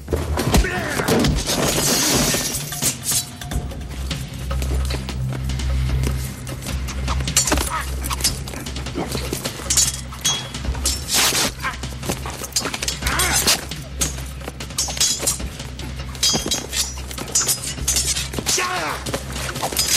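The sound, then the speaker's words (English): Knife-fight Foley: a dense, frantic run of sharp clatters, smashes and heavy thuds, constant for the whole stretch and layered over a steady low rumbling drone. “And I might be piping in the Foley work here of the because it's intense.”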